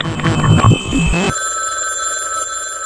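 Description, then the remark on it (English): A telephone rings loudly, a sustained bright electronic trill that follows a brief burst of busier, mixed sound at the start. “I received a phone call.”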